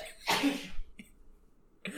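sneeze

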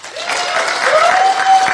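audience clapping

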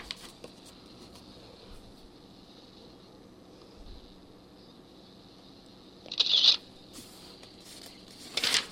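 turning a book page

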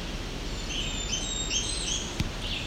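blackburnian warbler song

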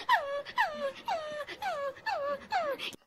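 dog whimpering

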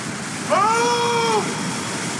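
roaring waterfall

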